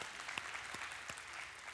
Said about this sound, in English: Yeah, we can clap for him. He's good. He's good. I like that guy.